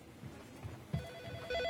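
A phone rings with a bright electronic tone that starts partway through and swells louder toward the end, over faint low thumps and room noise, as Liz gets a phone call in a scene from 30 Rock.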